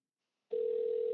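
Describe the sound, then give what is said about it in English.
After a moment of silence, a steady electronic telephone tone starts abruptly and holds at an even pitch and volume: the ringing heard on the line while an outgoing phone call to a guest connects. “It's ringing.”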